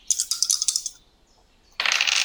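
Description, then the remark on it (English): Dice rolled on a table during a game: a quick rattling clatter of about eight rapid clicks, then a short pause before a second, denser burst of rattling. Fairly loud, no voices. “So you literally just rolled 7, 7, 7.”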